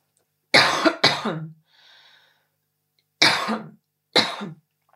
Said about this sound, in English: So I would say, I just need to clear my throat.